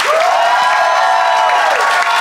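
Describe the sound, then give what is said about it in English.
A live audience in Phoenix bursts into loud, steady applause to vote on which side of a debate is in the right, a dense wash of clapping that holds for about two seconds, with some vocal whoops and cheers rising through it. “But if you think Tom and Thomas made the best case and therefore Omega's in the right, applaud now.”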